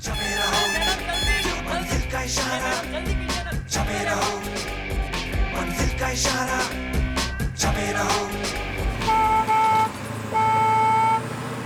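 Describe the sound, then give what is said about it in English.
A bus horn honks in loud, steady blasts amid dense street traffic noise, with a sustained horn tone near the end. No one speaks. “The sound of the school bus honking and the driver saying, "Madam, jaldi karo," or the Tamil equivalent to that, has been the story of my life every morning throughout my school life.”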